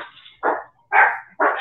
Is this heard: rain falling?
no